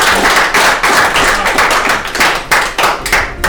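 An audience applauds steadily, a dense wash of many hands clapping at once, loud and continuous with slight swells, no voices audible over it.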